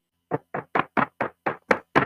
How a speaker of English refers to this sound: Wait a minute. Is somebody knocking on the door? Yeah, come on in the studio.